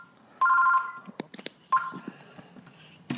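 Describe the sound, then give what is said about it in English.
A telephone rings in two bursts of a bright, warbling electronic tone, the second cut short, with some soft clattering and background noise in between. “let's pause for a second, Enrique, and see that phone stop ringing”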